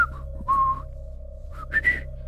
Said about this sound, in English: He's moseying to the room, probably whistling a tune.